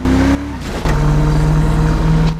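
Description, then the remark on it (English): A car engine is started as someone gets in, turning over and settling into a loud, steady idle hum that runs unbroken for a couple of seconds, with no voices. “It's weird because as soon as I get in and start the engine, like 20 fuel disappears.”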